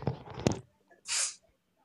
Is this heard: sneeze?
yes